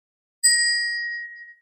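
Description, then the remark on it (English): A single bell is struck once at a remembrance ceremony, giving a clear, bright ringing tone that fades away over about a second, heard alone in silence. “We spoke the names we knew and rang a bell for the ones we did not.”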